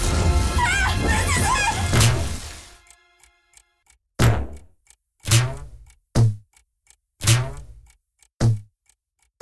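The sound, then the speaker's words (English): After music hard cuts from a brief burst of busy, mixed sound, several bouncy, boinking punch hits land one after another at uneven intervals as a character punches something over and over, each a loud, springy thump with a short ringing decay. “the music just hard cuts, and, like, it, you just hear, contextless, that bouncy, like, boink noise”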